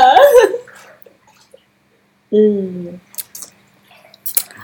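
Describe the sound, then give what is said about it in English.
Sipping and swallowing of a drink of Freak Show wine with a splash of Douce and a splash of cranberry juice, then a satisfied voiced exhale and a few soft wet lip smacks and mouth clicks, with quiet pauses between. “I had a little, that was Freak Show wine with a splash of Douce. And a splash of cranberry juice.”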